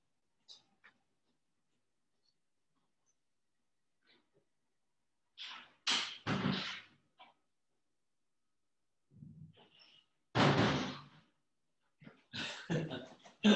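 A back door is shut with a series of loud, abrupt clunks and rattles, separated by short quiet gaps and ending in a final heavy bang, with no one talking.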